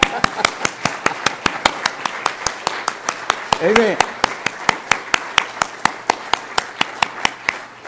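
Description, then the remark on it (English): At a church service, sharp, evenly spaced claps keep a steady, quick rhythm for the whole stretch as an audience claps along in a round of applause for God, with a single voice calling out briefly partway through. “And the second thing we do, I'm going to give God a big round of applause.”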